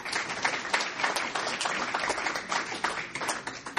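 An audience applauds steadily, many hands clapping in a dense, even patter that holds at a fairly loud level throughout, with no voices over it.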